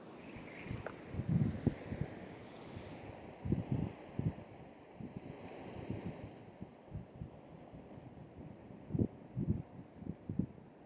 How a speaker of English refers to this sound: Okay. Listen to some sounds of the wind, probably mostly. And potentially some waves.